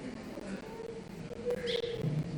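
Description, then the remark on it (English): Birds call in a few short, tonal bursts, including a brighter chirp midway, over a steady outdoor hum with no clear talking. “Yeah, don't worry about the birds, you guys watching love.”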